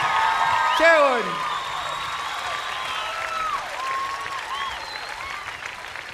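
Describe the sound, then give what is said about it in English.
An audience applauds and cheers loudly as a hurdy-gurdy is turned on, with whoops and sweeping whistles over a steady wash of clapping that fades slightly after the first second but continues throughout. “Oh, we have some hurdy-gurdy fans in the audience, I can tell.”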